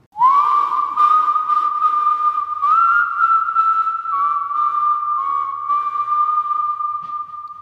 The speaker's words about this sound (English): That night, the familiar whistle started outside Jacqueline's window again.